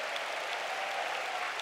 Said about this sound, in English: Come on, somebody give the Lord a big clap.